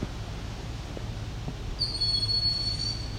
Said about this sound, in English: At this point, I will say is a young Cooper's hawk. Very dark bird. I may have to correct myself later, though. Generally, the Cooper's hawk is not identified by ear. This guy really does sound like an alarm got set off.